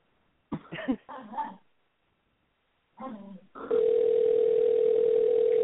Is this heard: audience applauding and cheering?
no